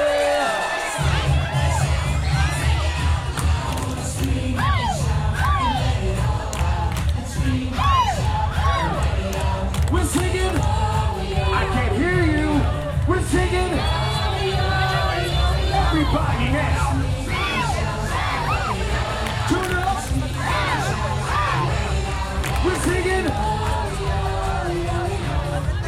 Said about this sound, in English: Everybody scream! Say hey!